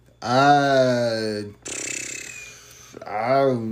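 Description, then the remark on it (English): A loud, voice-made fart noise: a drawn-out groaning blast, then a buzzy, sputtering raspberry, and a final short honking burst, with no talk around it. “farting on the podcast again.”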